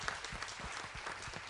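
A church audience applauds a family after they shared, with many hands clapping in a dense, steady patter that stays fairly even in loudness throughout, with no voices standing out.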